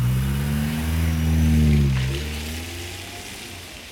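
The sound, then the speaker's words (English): A waiting car's engine revs up outside a church, its pitch climbing and then dropping as the car pulls away and the sound fades into a steady background hiss. “Una and Mundy skirted out of the church first and hopped into a waiting car.”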